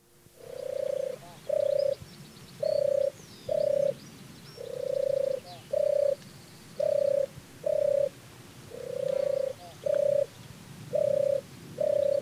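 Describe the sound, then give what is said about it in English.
A turtle dove's deep, vibrating tur-tur mating song repeats steadily in paired bursts, fairly loud, with faint background birdsong and no talking. “It's announced by its deep, vibrating tur tur mating song, which is actually where it receives the name turtle dove.”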